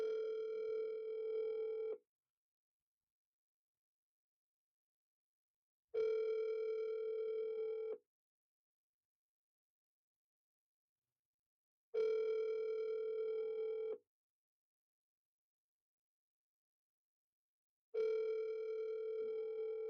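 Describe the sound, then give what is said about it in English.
An outgoing phone call rings four times with no answer, each steady two-second ringback tone separated by about four seconds of silence, clear, with no voices. “We could not get Alessino on the phone”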